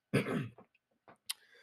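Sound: coughing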